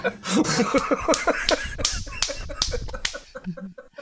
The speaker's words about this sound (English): I guess I was just clapping at him. Which I didn't mean to.